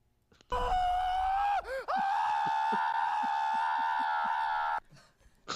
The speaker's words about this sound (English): It's the guy from I Think You Should Leave. And he's just screaming.